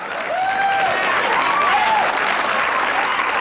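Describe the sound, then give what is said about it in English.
Studio audience applause from the Newhart audience as the lights come up and they see the Bob Newhart Show set: a dense, steady wash of clapping that holds for about three seconds, with a few rising and falling whoops or whistles mixed in. “And then you get applause.”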